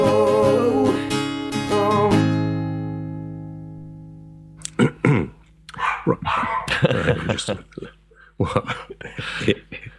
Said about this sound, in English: Right, well, that was edited highlights of my dog, Daisy May, having a little bark. And she's doing it again, isn't she?